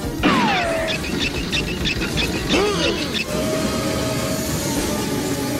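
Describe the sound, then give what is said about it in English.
A train roars past in a loud, continuous rumble, with sharp metallic squeals sliding down in pitch and a sustained whining tone over dense clattering noise. “There's a train coming.”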